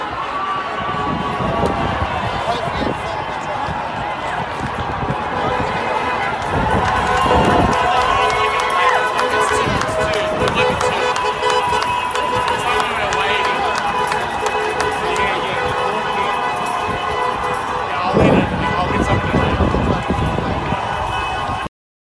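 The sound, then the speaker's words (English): A large outdoor crowd of protesters at a rally in Sydney, last weekend during the lockdown, fills the street with a loud, continuous roar of voices and footsteps, with occasional swells of shouting over the steady din. “How's that crowd? Isn't that amazing?”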